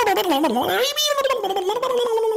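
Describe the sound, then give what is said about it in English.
A voice imitates a keytar with a wavering, synth-like tone that bends down and then up before holding a steady buzzy pitch. It sounds loud and continuous for about two seconds, with no words. “It made that noise too when you played? Exactly that noise.”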